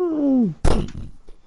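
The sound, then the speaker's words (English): A door swings shut: a drawn-out creak that slides downward in pitch, then a solid thud as it closes, with a brief rattle trailing off afterward. “Door closes.”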